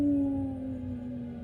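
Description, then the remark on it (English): A voice imitates a low, steady howling wind, holding one sustained hum that slowly sinks in pitch for over a second, fairly loud with no other sounds around it. “It seems you hear the howl of wind.”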